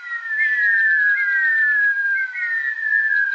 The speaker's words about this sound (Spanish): Cuando los huevos están por eclosionar, los polluelos, todavía al interior del huevo, comienzan a emitir un silbido curioso. Imagínate cómo se escucha cuando 50 o más silban al mismo tiempo.